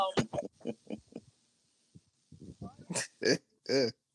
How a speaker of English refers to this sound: Forgive him. It's okay. It's okay. All right. My apologies, everybody. My dog is going wild.